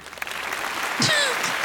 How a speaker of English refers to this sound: It's a round of applause. I love it. I love it to death.